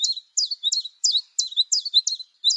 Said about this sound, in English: Finally, we hear a song of insect-like trills mixed with whistles and buzzes. It's a beautiful male blue throat, his vivid azure throat and upper breast rimmed with rust. The song presses on and on.